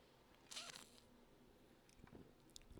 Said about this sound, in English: Hold on. I'm going to take a sip of my beer.